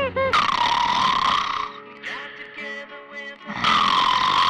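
A recording of a person snoring loudly, played back from a file recorded the night before: two long, rasping snorts separated by a quieter, wheezy breath, with no talking over it.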